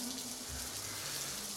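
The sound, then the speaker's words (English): Steady, soft rainfall makes a continuous hiss with no distinct drops standing out, and a faint low hum sits beneath it throughout. “Can you feel the rain just falling down?”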